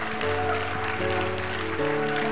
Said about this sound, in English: Come on, let's give the Lord a hand clap of thanksgiving and praise today.